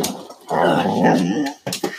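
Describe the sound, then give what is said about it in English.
A dog pestering the speaker lets out a sustained, loud growling whine lasting about a second, then trails off into a few short, higher-pitched whimpers. “Oh, this bloody dog.”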